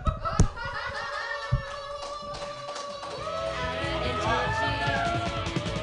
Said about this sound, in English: Keep your hands clapping, everybody,